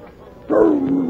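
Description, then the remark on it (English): After a brief quiet moment, a dog named Rags lets out a sudden loud bark that stretches into a drawn-out, whimpering whine. “a friend of mine, and his dog”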